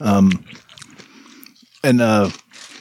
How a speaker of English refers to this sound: I don't care about the chewing. Nobody cares about the chewing. They actually like the chewing. Mouth noises.